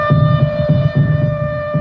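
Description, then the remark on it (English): A tornado warning air siren of the kind used in Texas, played as a demonstration rather than a real warning, holds a steady, loud, buzzing tone with stacked harmonics, while a low throbbing pulse beats underneath at a roughly regular rhythm. “That's an air siren.”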